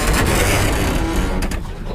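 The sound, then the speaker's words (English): A loud, dense mechanical clatter from the big printing press, which has seized up again, grinds on steadily, with a few sharper knocks toward the end as the noise thins slightly. No one speaks. “The big printer! Seized up again, sir!”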